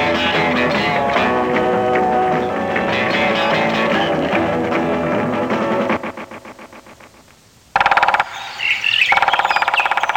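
A pileated woodpecker, body about 17 inches long, drums on a giant sequoia in an uncut forest while looking for food, a rapid rattling burst that fades away, with busy birdsong and chirping around it before and after.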